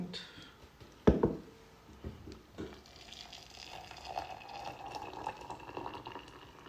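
A sharp knock of a glass being set down, then a steady stream of water pours, splashing and filling a glass with water for several seconds with no talking.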